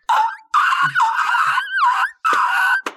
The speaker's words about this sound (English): Is that …'s whistle tones I hear? Hey. … pulls out her whistle tones and she's like, oh yeah, I'm going to sing a little bit.